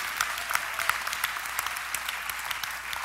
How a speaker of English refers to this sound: I said, every nation must decide which God is their Lord. We don't have any problems with other people coming in here, but they should at least know who our God is. Now, you all clap, man. You understand?